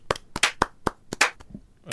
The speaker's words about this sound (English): What is this? Slow clap? Slow poke? Slow clap. Yeah, slow clap. Sounds like somebody getting slapped in the face.